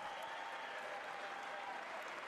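Sustained applause from a large audience as the President of the United States is announced, a dense, steady wash of many hands clapping at once, with no voices rising above it.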